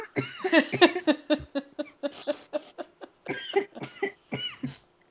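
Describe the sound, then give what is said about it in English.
A coughing fit from laughing too hard, tangled with breathless laughter: a long run of rapid, raspy bursts in uneven clusters, with short gasps in between, going on for several seconds. “Sometimes when I laugh too hard, I start coughing.”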